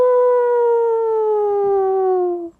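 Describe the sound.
A single long howl from wild wolves in Yellowstone, heard off in the distance, a steady, clear tone that slowly sinks in pitch over about two and a half seconds before cutting off, with no other voices.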